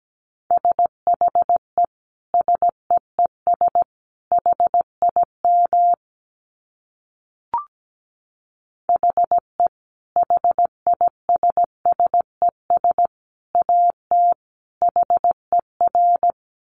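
Morse code beeps on one steady, clean pitch, sent at 17 words per minute in quick short and long pulses at a brisk pace, with a brief pause and a faint click midway before the sending resumes.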